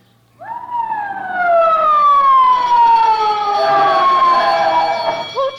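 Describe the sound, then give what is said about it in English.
A loud fire alarm siren, set off as a false alarm from a fire alarm box, wails on its own, starting abruptly and then holding a steady, slowly falling tone with a rich, buzzy overtone for about five seconds. “There's a fire alarm box.”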